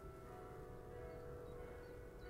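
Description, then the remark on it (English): Bells of an old town church, formerly Catholic and now Protestant, in the north of the country ring faintly in the distance, their sustained, humming tones blending into a steady resonant drone over a low background rumble, with no voices present. “You hear those bells in the distance?”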